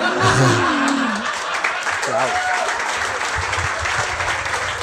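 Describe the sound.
An audience breaks into steady applause, a dense wash of clapping that carries on throughout, with a few voices and some laughter rising over it early on.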